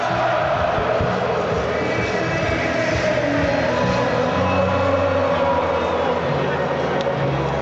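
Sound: stadium crowd cheering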